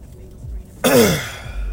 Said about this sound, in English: I'm sorry, I'm fucking coughing and shit. My damn allergies is gone. I'm stuffy, and if I roll down the window, it starts my nose starts fucking running and all this shit.